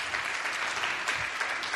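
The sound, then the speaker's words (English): An audience at a church service claps for the worship band, a dense wash of many hands with no pauses, holding an even loudness for the whole stretch. “Would you clap your hands for the worship band?”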